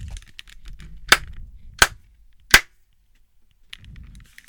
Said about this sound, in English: Okay, can you clap?